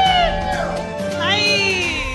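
A comedy club audience cheers and applauds as the comedian closing out the show is introduced, a loud steady wash of clapping with rising and falling whoops riding over it for about two seconds.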